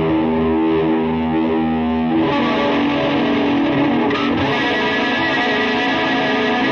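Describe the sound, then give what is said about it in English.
A distorted electric guitar played through stereo delays on a live stream plays sustained, dense chords with a smeared, echoing delay tail, the sound thick and loud throughout, shifting to a busier texture partway through. “We got stereo delays.”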